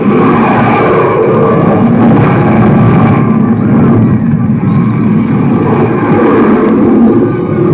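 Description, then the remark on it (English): A loud, steady rocket engine roar of a landing rocket ship rumbles without a break, with deep low-end thunder and a harsh, buzzing drone layered on top, holding its intensity for the whole stretch. “There they are! They're coming in! The landing rocket ship first!”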